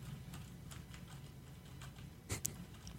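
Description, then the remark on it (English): Irregular, quiet clicks of someone typing on a mechanical keyboard, a handful of separate keystrokes over a low steady hum, with a slightly louder pair of clacks near the end. “This is normally how he types.”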